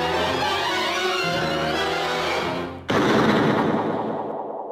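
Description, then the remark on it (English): A steady, dense tonal wash plays for a few seconds, then briefly dips before one loud gunshot, the last shot in the Bambi hunting scene, cracks out and rings on, slowly decaying over the final two seconds. “The last shot rings out loudly.”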